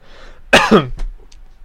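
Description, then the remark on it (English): A loud burst of coughing from a tickle in the throat, followed by a short throat clear, with a brief sharp click near the end and no talking. “Sorry for my coughing for some reason.”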